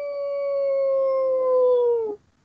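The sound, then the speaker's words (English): A dog somewhere in the background gives a single long, wavering howl that holds a steady high pitch for about two seconds, then dips and cuts off abruptly. It is loud and clear, with no talking. “Somewhere in the background, a dog is reacting.”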